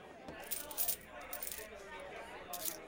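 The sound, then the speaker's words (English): Several coins of change, including 5-cent coins, clatter and jingle onto a hard bar surface in quick, uneven bursts as a bartender hands back change for a round of drinks, with a faint background murmur of a crowd. “Sorry about the change. I haven't seen 5-cent coins for a while.”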